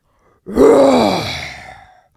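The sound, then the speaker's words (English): A voice imitates a lion's roar: one loud, rough growl that swells quickly, then slowly falls in pitch and fades over about a second and a half. “La souris ran in the direction of the lion's roar until she reached the edge of a swamp.”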